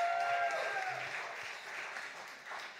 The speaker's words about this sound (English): So round of applause for Nate being up past his bedtime.